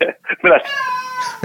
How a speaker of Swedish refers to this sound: Utan nu börjar katten jama igen. Skrik inte kattjävel.